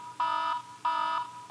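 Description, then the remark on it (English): An electronic alarm blares in loud, repeated bursts, each a steady buzzy tone holding one pitch for about a third of a second before cutting off, three pulses in a row with no talking. “Once our device detects the iconic voices of podcast bros in the vicinity, the sirens and flashing lights will start, and they won't stop until those pod boys are pod gone.”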